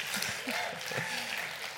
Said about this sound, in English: Yeah, all right. You guys can keep clapping. I like clapping. It makes me feel really, really important.